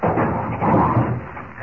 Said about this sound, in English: He's behind this heavy wooden door, locked in. Get away from the door, Jimmy. It's coming down.